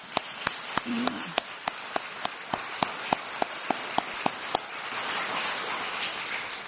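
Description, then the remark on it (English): A church audience gives a round of applause in thanks: a hiss of many hands under a single sharp, evenly spaced clap repeating about three times a second, which stops after a few seconds as the broad wash of applause continues. “let's let them know again by a round of applause.”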